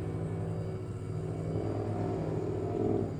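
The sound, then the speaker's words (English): A steady, low droning rumble of helicopters passing overhead, continuous and fairly loud throughout, swelling slightly near the end, with no voices. “Ignore the black helicopters, folks. They get a little loud sometimes.”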